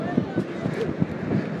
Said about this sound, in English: The sound of the Atlantic Ocean.